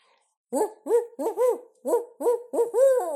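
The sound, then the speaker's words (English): A person in the woods imitates a barred owl, giving a quick rhythmic run of about seven loud hoots with rising-and-falling pitch, the series ending in a drawn-out final call. “Today Devin was listening for birds in the woods and I did a owl call.”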